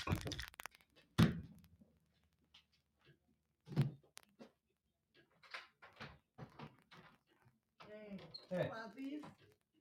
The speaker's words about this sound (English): Somebody's fucking knocking at my door. Hang on.